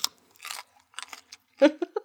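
loud crunchy chewing

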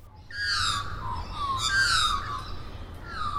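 australian magpie call

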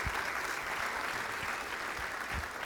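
church audience applause

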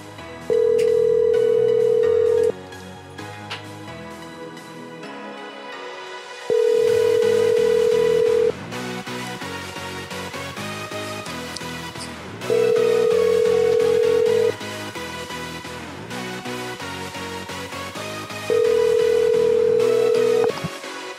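phone call ringing unanswered

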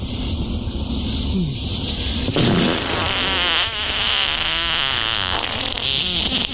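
fart

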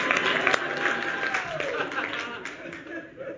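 audience applause

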